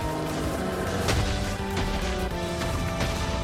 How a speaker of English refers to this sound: Yeah, ooh, that's a claw swipe.